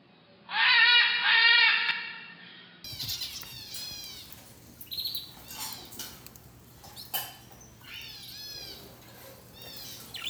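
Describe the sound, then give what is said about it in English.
Pet birds chirp and call inside a bird shop, starting with a loud burst of busy twittering, then repeated sweeping whistles and chirps from several birds, with no talking. “Our scattered secret audio recordings from inside this bird shop, and then come back and give our final thoughts about our impressions of the birds.”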